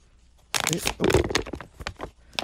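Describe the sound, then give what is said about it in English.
Crinkling and tearing of tightly wrapped paper, heavy with adhesive, as a sub sandwich is pulled open, a run of sharp, bright rustling bursts after a quiet start, with a voice briefly heard in the middle. “That's all it took was for you to come in the door and start breaking open a fucking sub sandwich for me to get pissed again.”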